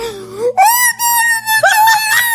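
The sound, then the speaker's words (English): A loud, ghostly electronic moan from a boo box, wailing in three sustained swells that climb from a low hum to a high, quavering pitch, with no voices over it. “The boo box.”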